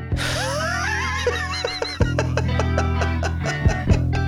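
A guitar played through a talk box makes squealing, grunting pig-like noises with sliding, voice-like pitch bends, over a steady sustained music bed and sharp percussive hits.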